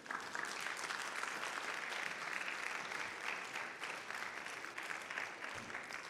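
An audience applauding steadily, dense overlapping clapping that stays loud and even for several seconds without pause, with no talking above it.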